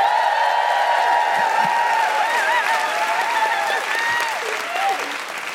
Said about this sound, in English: Please welcome to the stage, with general hooing and defiant cheers